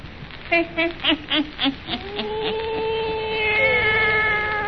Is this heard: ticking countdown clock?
no